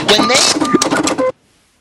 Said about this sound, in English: What was that? Was that a printer? I don't know. Yeah, it's supposed to be like a cash register. It says cash register, but it's I want a cha-ching. You know?